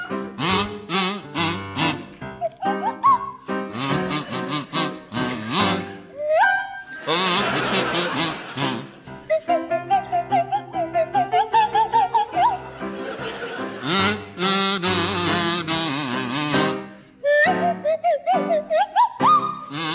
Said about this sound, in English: meld the ethereal lilt of the Swanee whistle with the chirpy croak of the kazoo